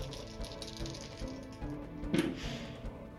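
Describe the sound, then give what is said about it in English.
Several six-sided dice clatter and tumble across a hard surface as they are rolled for damage, a quick run of small, irregular clicks and rattles with a sharper burst of impacts near the end, with no talking. “Let's roll it. Roll that damage.”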